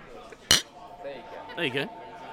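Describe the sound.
A single sharp, bright clink of beer glasses knocking together in a toast, loud, followed by a brief murmur of voices.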